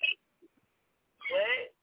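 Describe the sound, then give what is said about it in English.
A muffled, hollow-sounding voice of a caller comes through a phone line on the live call-in show Top Talk Rock Radio in two short bursts, thin and as if echoing in a tunnel, with a brief silence between them. “Why you sound like you're in the tunnel?”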